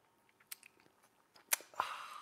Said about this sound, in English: You're like, where's my cup? Where's my mug? Where's my vessel? Well, now you got it. Get ready for the best thing that's going to happen today all over the world, the simultaneous sip. And it happens now. Go.